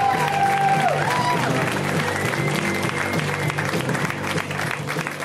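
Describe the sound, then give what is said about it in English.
A comedy show crowd bursts into sustained applause for comedian Moses Storm, dense clapping holding steady and loud for several seconds, with a brief tonal musical sting rising over it at the start. “Give it up for Moses.”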